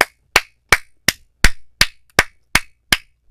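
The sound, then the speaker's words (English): Ten sharp hand claps in a steady, even rhythm, roughly three per second, each one loud, crisp and bright, with no voices in between. “Hand clap saying, by the grace of God, you got somebody that's good for you.”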